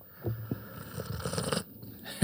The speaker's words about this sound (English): That was a good slurp. Yeah, so this is something that my wife educated me on that you because she works with coffee. Right. You need to get some oxygen. It goes to the taste buds and the back of the nose and da da da da.